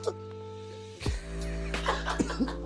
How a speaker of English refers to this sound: Don't cough, it's from the weed, man. It better be. Shit. Might be a little booty cough.